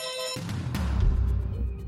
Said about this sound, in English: All the noises at the beginning of One Slip, that was Albert, that was the burglar alarm system here.